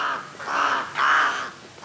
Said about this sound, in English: Alaskan Athabascan and Inupiaq peoples follow the gurgling calls of ravens to find game, and leave the carcass for the raven in return.